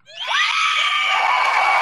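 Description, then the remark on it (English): An audience erupts into loud cheering and high-pitched screams, swelling within a fraction of a second and holding steady at full volume, with applause blending into the roar. “That is a ridiculous amount of applause.”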